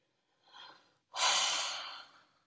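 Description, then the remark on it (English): A soft, short inhale followed by a brief pause, then a longer, louder breathy exhale that gradually fades out. Clear, with no talking. “Today, I want to talk to you about deep breathing.”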